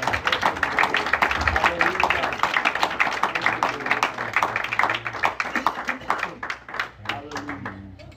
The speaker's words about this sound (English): So I like to ask him to come on up and just take his liberty and obey God tonight. So give the Lord a hand clap as he comes.